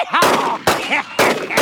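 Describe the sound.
A person makes rapid, loud mouth-sound gunshots like Yosemite Sam, a quick series of sharp bursty "pew" blasts with breathy, swooping tails, with no other talking.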